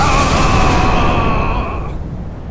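explosion sound effect

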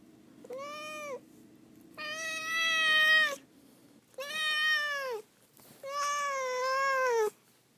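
domestic cat meowing

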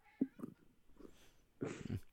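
cat purring

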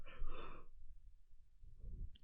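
yawn

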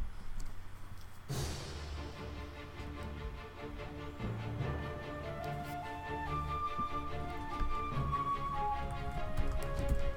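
video game soundtrack music

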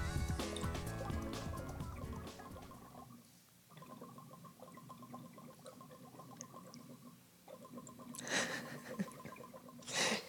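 taking a hit

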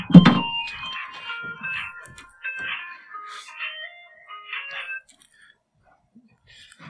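mobile phone ringing

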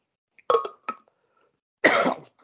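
coughing

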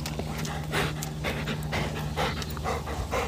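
dog panting heavily

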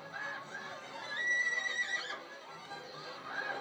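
horse neighing

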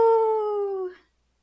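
wolf howling

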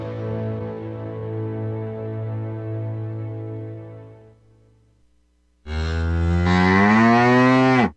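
cow mooing

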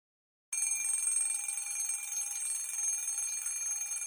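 alarm bell ringing

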